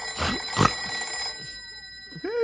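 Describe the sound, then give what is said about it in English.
A telephone bell rings steadily at a ranger headquarters, its bright metallic tone sustained at a clear level, with a couple of soft thumps early on and a short rising tone near the end. “Go back to sleep, Stumpy. It's only the phone.”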